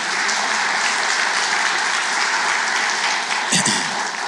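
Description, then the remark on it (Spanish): An audience claps loudly and steadily, a dense wash of many hands applauding without pause for the whole stretch, with a brief voiced shout rising near the end. “Dale un aplauso, Señor, fuerte.”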